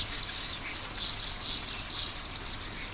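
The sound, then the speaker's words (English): A dense dawn chorus of many birds singing at once, with overlapping high chirps and trills forming a continuous, bright wash of birdsong with no talking. “The dawn chorus.”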